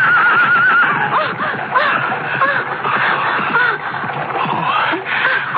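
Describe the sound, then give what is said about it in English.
A horse-drawn chariot rushes along an avenue in a loud, continuous clatter of hooves and rumbling wheels, with a horse's high, wavering neighs rising over the din. “Get out of the way, girl, the chariot!”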